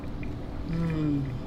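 More water is poured steadily over coffee grounds for a pour-over, a continuous low gurgling trickle that holds even and moderately loud throughout the short stretch.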